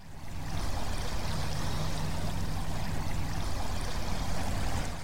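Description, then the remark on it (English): A steady, low-pitched hum, said to come from two giant oil drilling vessels and amplified, drones underneath a continuous wash of flowing, splashing water at a waterside spot looking northeast towards Largs. It holds at a constant pitch throughout, and no one speaks. “You can hear there, among the watery sounds, what Rita describes as a constant, repetitive, low-frequency hum.”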